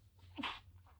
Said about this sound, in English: I just sneezed.